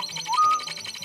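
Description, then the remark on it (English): A short, clear whistled robin call from a bird call program rises briefly and holds a bright tone for a moment, heard over a faint, steady background hum. “Bird call program is surprisingly popular, a robin.”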